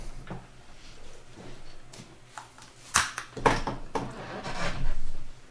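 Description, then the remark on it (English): A closet door is handled, giving a few sharp knocks and a clatter, followed by a longer scraping rattle as it slides or swings shut. Nobody speaks. “Wait, was that the door to the closet?”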